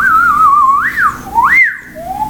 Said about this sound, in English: The idea of making a whistle is putting your mouth together, very small, into a small little circle. And with your tongue's use, you can whistle.